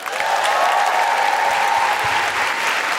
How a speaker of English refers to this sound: Thank you everybody for coming out. Big round of applause for everyone here at the South Bank Centre.